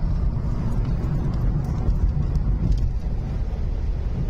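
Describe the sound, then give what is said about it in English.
Steady, low road rumble of a car cruising at highway speed behind a party van on the way to Atlantic City, as the van ahead pulls onto the shoulder and stops; a continuous drone with faint wind hiss and no voices. “So that's the van ahead of the car here. And it's pulling over on the shoulder and stopping.”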